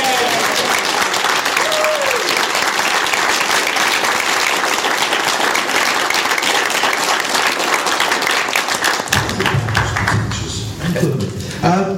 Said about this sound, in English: Excellent stuff. I think she'd have another round of applause. Yeah.